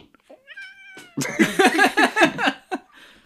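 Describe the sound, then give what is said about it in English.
An upset male cat yowls, starting with a short rising meow and then breaking into a loud, drawn-out, wavering caterwaul for a couple of seconds before trailing off. “You've upset my cat.”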